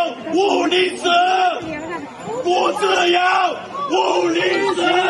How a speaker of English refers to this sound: He's saying, give me liberty or give me death. Okay, that's what he's shouting. And you've got people actually chanting along with him, okay, which is normally not the case.